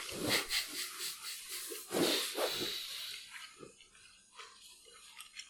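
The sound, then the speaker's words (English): Wet chewing and smacking from people eating tofu, with irregular mouth noises and occasional nasal breaths, and no talking. “It's gonna be like 5 minutes of us chewing.”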